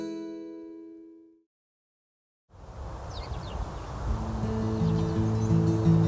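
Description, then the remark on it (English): Faint, scattered bird cheeps drift over soft outdoor ambience on a sunny, cloudless autumn morning, joined by a steady, gentle music bed; a ringing tone fades out before a brief silence at the start. “this morning you might be able to hear the birds cheeping because it is one of those classically beautiful autumn mornings.”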